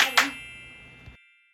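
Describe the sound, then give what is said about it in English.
Two quick, sharp claps close together open a bright ringing chord that holds steady, then cuts off after about a second, closing out a short segment jingle. “The two claps at the end are like, just really get me.”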